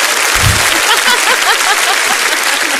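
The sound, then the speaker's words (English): Shakers rattle in a dense, bright, hissy wash that holds steady for about three seconds, with a low thump early on and faint voices murmuring underneath. “We have these wonderful shakers.”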